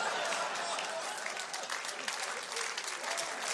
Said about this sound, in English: Wait. Don't applaud anymore. I don't have enough time.